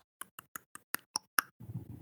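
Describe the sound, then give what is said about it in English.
A quick, even run of seven sharp tongue clicks, each a hollow pop that climbs a little higher in pitch, followed by a short breathy rustle with no talking. “Just so you know, so don't just be clicking so liberally.”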